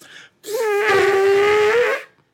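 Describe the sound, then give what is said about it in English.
A voice imitates an elephant with a loud, sustained trumpeting wail lasting over a second, its pitch holding steady with a slight rise and fall, after a brief breathy sound. “That was my piss-poor elephant noise.”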